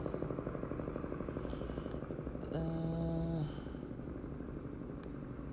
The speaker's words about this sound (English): got some helicopter action